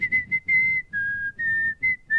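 A cockatiel whistles a short tune of clear, steady high notes, stepping slightly up and down in pitch with brief gaps between phrases, over a low background rumble.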